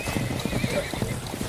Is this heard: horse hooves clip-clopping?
yes